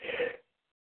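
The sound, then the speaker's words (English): A single short, explosive sneeze, fairly loud, over in under half a second and followed by silence, with no talking around it. “Bless you. Bless you.”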